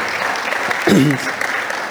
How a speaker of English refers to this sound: Lord bless you. Give her another applause there.